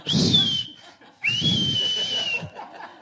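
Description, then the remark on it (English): A voice imitates an audiobook narrator's whistling sibilant S: two hissy, high-pitched whistled bursts, the first short and the second longer, fairly loud, with faint breathy laughter around them. “And because it's not just the whistle, it's just every time.”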